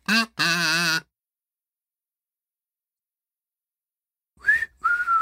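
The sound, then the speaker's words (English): A few brief whistled notes from the Camptown Races tune, whistled to signal the return from a break: a wavering burst at the start, a long silence, then two short, bright whistled phrases. “That's my miserable whistle to say that we're back.”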